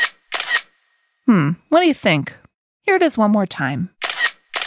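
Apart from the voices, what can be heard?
camera shutter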